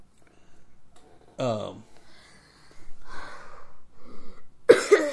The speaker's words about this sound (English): Like I said, we'll have to work through the coughs.